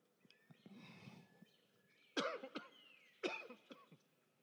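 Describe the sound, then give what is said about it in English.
After a few soft, muffled sounds, someone who has just taken a drink breaks into two harsh fits of coughing, each a strong hack followed by smaller rasping coughs, with no talking. “It should cause you to be careful of what you drink because you can start coughing afterwards.”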